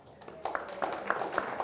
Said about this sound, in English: Yeah, I'm not asking for any more applause. Thank you very much. But thank you.